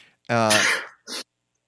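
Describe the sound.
A single loud sneeze starting with a strong voiced, rising "ah" that gives way to a short, hissy burst, then silence.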